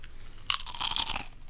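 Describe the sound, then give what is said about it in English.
A loud crunch of someone biting into ketchup-flavored Doritos chips right at the microphone, a burst of crackly brittle snapping lasting under a second with no talking. “Should I do a crunch into the microphone?”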